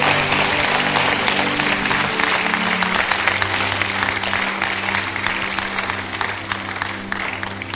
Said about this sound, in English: Clap for Jesus. It's good.